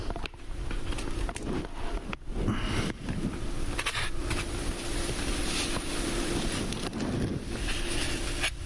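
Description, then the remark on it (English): Liquid poured onto a heating pad in a styrofoam food tray fizzes steadily and starts to warm, a continuous rough hiss dotted with sharp little crackles and pops, with no voices over it. “And she's pouring that liquid into the tray. And it's starting to fizzle already.”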